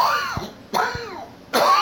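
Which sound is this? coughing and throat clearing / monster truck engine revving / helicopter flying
coughing and throat clearing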